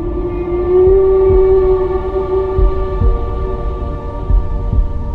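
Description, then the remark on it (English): Whale song: a long, low moaning tone with rich harmonics holds steady for several seconds, swelling slightly, over a murky rumble dotted with soft low thumps. No one speaks. “Who would imagine that whales could sing?”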